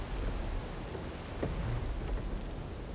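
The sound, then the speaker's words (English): Heavy, driving rain pours steadily in a gale-force storm over the North Sea, 127 miles off the east coast of Scotland, a dense hiss with a low rumble underneath, constant with no voices. “The driving rain almost drowns the lights of the Bibby Topaz, a diving support vessel, as it lists from side to side.”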